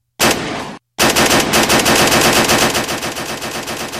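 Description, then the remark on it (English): Loud bursts of rapid gunfire: a short volley, a brief pause, then a sustained stream of fast automatic shots rattling on without any voices. “I came back with sound that is impeccable, along with gunshots.”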